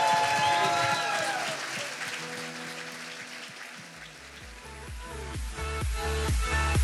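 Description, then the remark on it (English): An audience at Bethesda Church applauds loudly and steadily in praise to God, a dense wash of clapping, while keyboard chords and deep bass notes swell in underneath during the second half. “Before we pray and sing, can we give God the best praise we have all day? Come on, church.”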